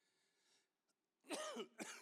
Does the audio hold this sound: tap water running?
no